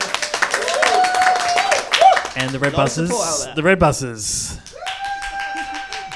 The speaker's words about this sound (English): Just for anyone listening to the podcast, all of that applause was coming from themselves. I don't know what you're talking about. Podcast audience at home, they wouldn't be aware that there are only six people here listening to this